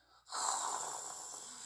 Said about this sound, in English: You, like 5 seconds after your head hits the pillow, just your snoring that you do. I woke up to my snoring. Excuse me. When I wake up, I hear this.